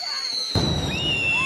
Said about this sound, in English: The neighborhood fireworks war was in full attack. Fireworks were being hurled back and forth at each other's houses.